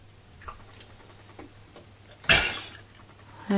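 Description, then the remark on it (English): Coco, a gorilla raised with humans for 39 years, gives one loud, breathy sneeze, followed moments later by a short, harsh cough, with faint clicks and a low steady hum underneath. “You did a sneeze and then a cough.”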